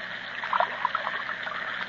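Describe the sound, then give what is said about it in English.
Broth pours steadily from a hot cooking tin into a cup, a continuous trickle with small gurgling splashes, no voices over it. “Yeah, oh, here, hold my 6 feet while I transfer it into the cup and feed him some of it.”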